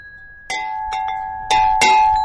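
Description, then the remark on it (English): A bronze bell is struck about five times in uneven succession, each bright metallic clang leaving a steady ringing tone that builds and grows louder toward the end, with no voices. “Here, artisans mold bronze into more bells.”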